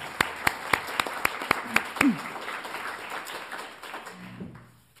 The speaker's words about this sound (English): So I think we'll give them a round of applause.